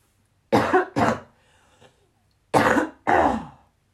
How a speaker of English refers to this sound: And I need to cough, so bear with me.